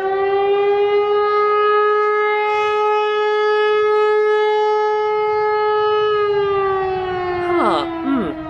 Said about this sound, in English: Sorry, what was that? Oh, that's just the air raid siren. Don't worry.